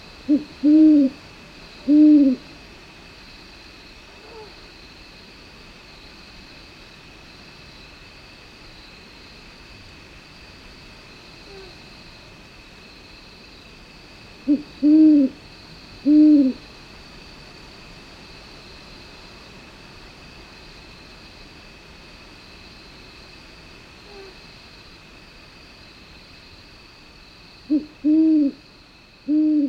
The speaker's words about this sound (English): But in the middle of the night, I get a surprise visit. A great horned owl, hooting from the cottonwood tree right outside my tent.